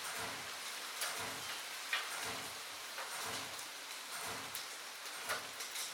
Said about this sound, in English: The wind falls, the rain slides silver down the glass.